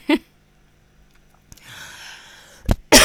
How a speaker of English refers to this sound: So yeah, sorry, I just had to cough. I've got a bit of phlegm going on. Give me a second.